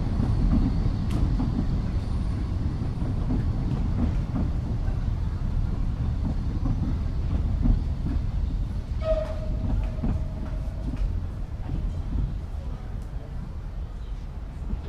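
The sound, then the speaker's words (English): A train arriving at a town railway platform rumbles loudly and steadily on its rails, a dense, heavy roar that never fades, with a brief high whistle-like tone rising over the din partway through. “The trains will hit here any second, according to my calculations.”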